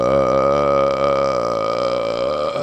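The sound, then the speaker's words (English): A long, loud burp rumbles out for nearly three seconds, a sustained, throaty tone with a steady pitch that trails off at the end, heard on its own with no talking. “Would you call a burp a flatulent?”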